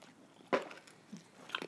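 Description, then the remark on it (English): Chewing Skittles candy with a few sharp, crunchy bites, one louder snap near the start and softer crackles toward the end, with no talking. “I'm still eating Skittles.”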